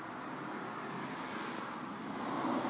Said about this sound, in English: Damn, that car was loud. I didn't realize how loud it is until they're gone.